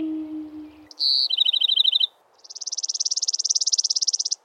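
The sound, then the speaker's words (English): Bird song: a short clear whistle runs into a quick trill of repeated notes, then after a brief pause a longer, buzzy rapid trill swells and rings on, fairly loud. “Then came back to Earth with their song.”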